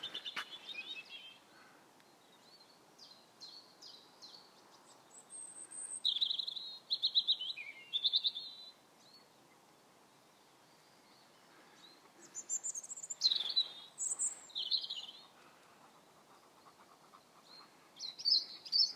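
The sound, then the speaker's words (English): A small bird, bigger than a robin, chirps from up high on top of a pine tree in high, thin bursts, quick clusters of notes separated by short pauses, fairly faint, with no voices. “I see a bird. I see a bird on top of a pine tree.”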